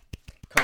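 A few light, evenly spaced hand claps, a quiet golf clap congratulating the winner of the Creets Kenny NFT giveaway, followed by a sudden louder burst of bright noise at the end.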